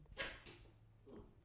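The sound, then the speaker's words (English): The paws of Ernest, a dog, patter faintly across a hard floor in a house, a few soft, uneven clicking taps spread over a moment, otherwise quiet, with no one talking. “It's interesting how you just told a story, but the pitter-patter of Ernest's feet was more interesting.”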